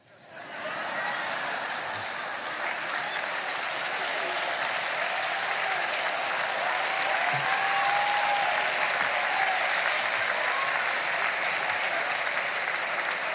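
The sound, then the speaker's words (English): Sustained applause from a large audience during a church service, a dense steady wash of clapping that starts abruptly and holds at an even, fairly loud level throughout, with no voices standing out. “All you are clapping, you have to talk to my wife, because after the service, she'll say, I told you.”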